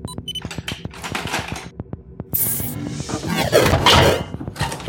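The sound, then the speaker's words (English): A door is unlocked and opened: a quick series of mechanical clicks and clunks from the lock, followed by louder rattling and a broad scraping whoosh as it swings open. “I'm going to unlock the door.”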